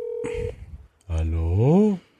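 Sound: phone dialing tones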